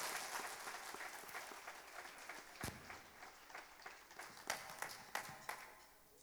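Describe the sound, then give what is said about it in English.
An audience applauds the pastor and his family steadily, a dense wash of many hands clapping with a few sharper, louder claps standing out before it slowly begins to thin. “Can we give our pastor and his family a round of applause?”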